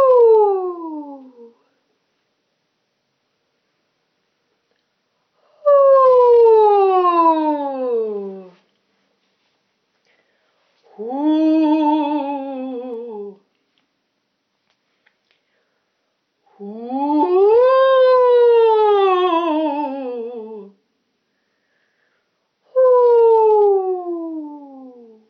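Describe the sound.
A voice sings a series of five rising-and-falling 'whoo' glides in a light head voice, imitating ghost noises, each a few seconds long with pauses between, sounding much like a siren.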